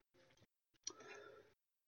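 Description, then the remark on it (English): A plastic water bottle is grabbed and handled: a short crinkling rustle, a brief pause, then a sharp click followed by a longer crackling squeeze, with no talking. “I actually haven't made that list yet, but excuse me, let me grab a water here.”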